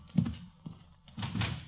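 A front door is opened: a dull thunk of the latch, a small click, then a brief rattling sweep as it swings open. No one speaks.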